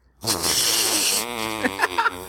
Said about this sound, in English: You got us. Good one. That was a segue fart. That's good. That's good.